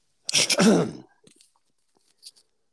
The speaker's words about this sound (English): I was just going to say, since I was coughing there,